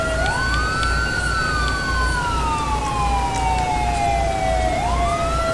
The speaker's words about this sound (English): It's lagging so bad I can't access the EUP. Oh my god! It's freezing up so bad I can't turn off the sirens.